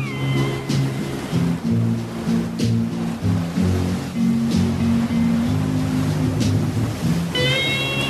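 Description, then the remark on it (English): Smooth ocean waves wash steadily onto a shore in a continuous, fairly loud surge, while sustained low tones and a few high, thin cries sound over the surf. “Nice, smooth waves upon the shores.”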